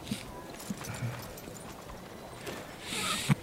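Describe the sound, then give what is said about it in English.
Horse hooves clip-clop in a video game as the horse Winter is ridden, in a loose, uneven rhythm, a few dull thuds spaced across a few seconds over a soft background hiss that swells near the end. “Giddy up. You just ran over those guys.”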